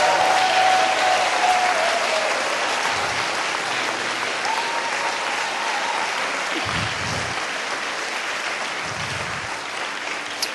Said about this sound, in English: Let's just join the party. Let's just praise Him. Give Him a clap offering. Amen.